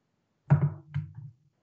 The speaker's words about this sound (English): I heard a knock. Okay, so go answer.